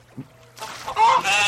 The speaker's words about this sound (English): You can play with the chickens.